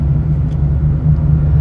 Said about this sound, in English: give me one second here while I get through the darn intersection on my way to the day job on the back road. Because this is about the only place where I have to experience a little bit of traffic.